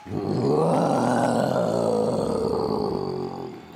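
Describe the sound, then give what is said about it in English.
A single long, loud, deep Tyrannosaurus rex roar, harsh and rumbling, swelling quickly and sustained for over three seconds before tapering off. “The Tyrannosaurus Rex has one of the loudest and longest roars around.”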